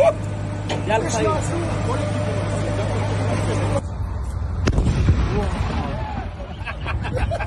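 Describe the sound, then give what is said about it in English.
Several dull, booming explosions from the bombardment of Gaza thud irregularly, with a low rumble between them while people chatter, heard from fields at the front line with Gaza. “All right, guys, we're booming Gaza right now.”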